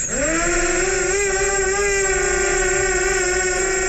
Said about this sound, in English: It's the whirling propeller sound of a drone.